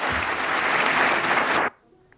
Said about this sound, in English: And it turned out that what they were doing was holding their breath. They do eventually clap.